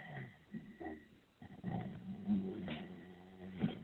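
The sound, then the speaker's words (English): A dog growls in low, rumbling bursts over a thin, muffled phone connection, the growl swelling and easing for a few seconds with no one talking. “I hear some growling. Is that a dog on the phone?”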